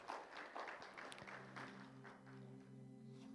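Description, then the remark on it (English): A church audience claps together in praise of the Lord at a morning service, a dense burst of applause that gradually thins out, while sustained keyboard or organ chords swell underneath. “Can you give the Lord a hand clap of praise this morning?”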